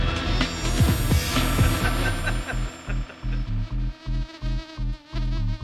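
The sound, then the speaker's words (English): A loud, buzzy electronic synth drones in dense layers, swarming like bees, then breaks into a chopped, throbbing pulse with a steady dance rhythm. No voices. “See, this is the bit. You're in a rave, and a swarm of bees are coming to...”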